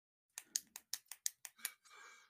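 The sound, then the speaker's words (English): A quick run of about eight sharp, crisp pen clicks in steady rhythm, followed by a brief soft rustling scrape. No one speaks. “I can hear that pen clicking, by the way.”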